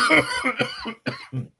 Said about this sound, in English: And during the commercial break, the reason why I coughed, because I just took a hit of the stizzy.